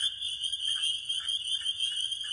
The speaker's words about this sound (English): We got the spring peepers is starting up, which is cool. In fact, I'll give you a little bit of spring peeper action. I was driving back from the gym the other night. And did you stop and record the peepers? Of course I did.